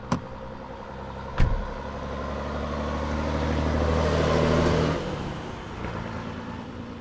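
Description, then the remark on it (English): A truck engine rumbles and revs with a low, steady drone, building in intensity before easing off as the vehicle pulls away; two sharp clunks, like doors shutting, come near the start. “Just get in the truck and let's go!”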